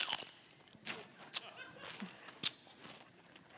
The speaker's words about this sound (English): sorry, I'm just chewing celery and I just can't stop chewing it. It's so boring.